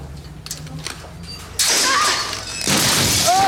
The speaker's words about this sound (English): Okay, she goes right through a glass case. Yeah, she doesn't just fall onto the floor. She falls, her entire side is an incredible fall, too, from a filmmaking standpoint, and just falls right onto a glass case on her side.